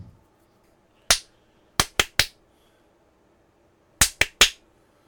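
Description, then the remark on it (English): Sharp hand claps for a ritual 'clap prayer', with no talking: a single clap, then a quick burst of three, a pause, and another fast group of three, each crisp and loud. “Or a clap and a prayer.”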